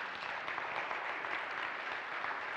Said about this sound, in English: You can clap now if you want.